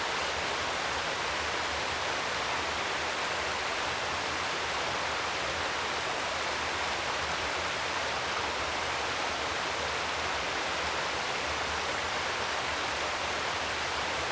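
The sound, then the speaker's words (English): A steady, continuous rush of cool running river water, low after a very warm summer, heard from beneath a large beech tree; broad and hissing, holding an even level throughout with no voices or other sounds over it. “How does the sound of cool running water affect how you feel?”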